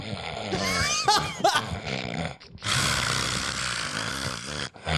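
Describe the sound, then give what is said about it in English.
Loud, raspy snoring of a man asleep: a rough, rumbling drone with harsh gurgling bursts, a short break around the middle, then another long, heavy snore. “Legs just stomping while he's snoring.”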